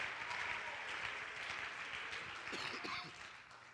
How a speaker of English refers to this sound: Oh, clap your hands if you want something better tonight. Come on, clap your hands if you really believe God can give you something that you never had.